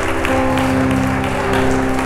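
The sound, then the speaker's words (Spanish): A church audience claps steadily and loudly for God for the whole stretch, a dense wash of applause layered over sustained low musical tones. “¿Alguien tiene un aplauso más fuerte para Él?”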